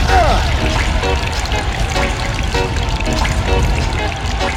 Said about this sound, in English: first turn on the water.